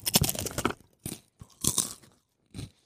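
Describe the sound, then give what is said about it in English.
Close-up crunchy chewing right at the microphone, a burst of crackly bites followed by several shorter crunches separated by brief pauses, loud and dry with no talking. “For the first 1 minute of the podcast, let's just start with you chewing.”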